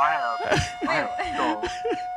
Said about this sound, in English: Hold on. Let's hit the siren on him, man.